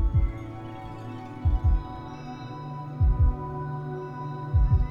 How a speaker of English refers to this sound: Place your hands on your heart, feeling the warmth of your skin. Noticing the drumming of your heartbeat.